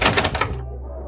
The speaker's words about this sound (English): Are we just supposed to ignore the explosions?